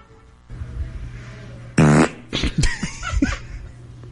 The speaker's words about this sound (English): See, it's a solid fart. Yeah, see, I think that that fart could become a Hollywood star. That's pretty picturesque.